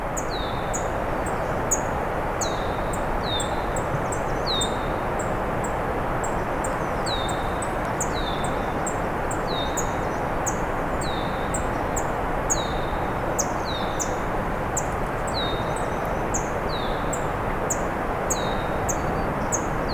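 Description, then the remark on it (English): A red-winged blackbird sings over and over, its short, bright notes repeating steadily above a constant rushing background hiss, with no one speaking. “Red-winged blackbird's been going on and on for a while.”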